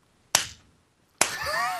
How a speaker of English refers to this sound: It's really hard doing a slow clap with a microphone that's attached to my face. you're just basically being a seal at this point. Just I have to like bend backwards and do it.